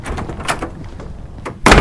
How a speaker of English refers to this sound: What are you doing? Closing the gate.